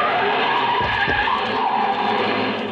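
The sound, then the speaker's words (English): A car starts up down the street and tears past with loud, screeching tires skidding on pavement, a sustained, harsh squeal over a roaring engine, continuous for a few seconds. “It was a short trip because a car started up down the street and the old man couldn't have made it with a pocket full of aces.”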